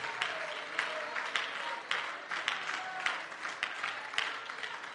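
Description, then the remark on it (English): A crowd claps steadily, with sharp regular beats repeating roughly every half second in a rhythmic, unified pattern, fairly loud and continuous throughout. “Somebody clap your hands with me right now.”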